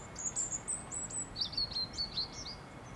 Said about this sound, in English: Shooting and trapping birds on their migratory routes to Africa is a generations-old bonding ritual for Maltese men. They catch birds to keep them in cages and enjoy their song.